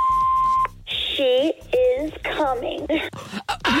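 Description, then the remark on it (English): A single steady electronic beep from a hotline's answering machine, held for over half a second, cuts off abruptly before voices start talking over a busy background. “Leave a message after the beep”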